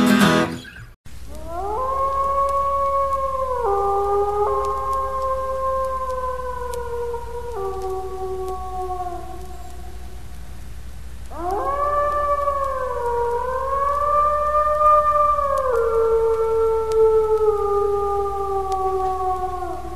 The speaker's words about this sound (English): Like at least one wolf. I mean, obviously wolves, but couple of wolves, baby.